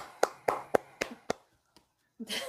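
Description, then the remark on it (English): Five sharp, evenly spaced hand claps in quick succession, then a faint lone clap and a brief rush of noise at the end. “Let's all clap because Cholo Trucker can't.”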